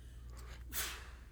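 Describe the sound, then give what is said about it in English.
A single quick sneeze during a church sermon, a short breathy burst with a sharp hissy edge, rising briefly over a steady low hum. No one talks. “Bless you.”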